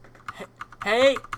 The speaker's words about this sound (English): I'm just making clicky noises now. Where, it's a nice keyboard. It's great.